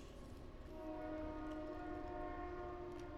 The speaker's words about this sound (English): The train's coming, guys.